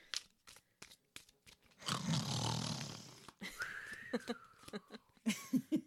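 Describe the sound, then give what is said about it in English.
A single long, rough snore rumbles for over a second, followed by a thin whistling breath and a few soft snorts and clicks, with no talking. “And I'm distracted by his snores to stop counting.”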